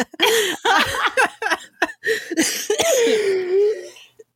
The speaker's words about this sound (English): Oh my god, I'm coughing. I'm sorry, guys.